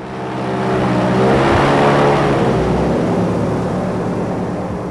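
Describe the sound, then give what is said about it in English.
An airboat engine roars steadily with a buzzing propeller drone, its pitch wavering and dipping slightly as the boat, driven by former Miccosukee chairman Buffalo Tiger, eases off and glides to a stop at a deserted tree island in the Florida Everglades, a few miles from the Tamiami Trail; no voices. “An airboat glides to a stop at a deserted tree island in the Everglades a few miles from the Tamiami Trail.”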